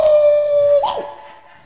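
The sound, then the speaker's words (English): A voice imitates a dog with one loud, drawn-out howling bark that holds a steady pitch, then breaks and drops off abruptly, heard alone. “Before he died, he was barking like a dog.”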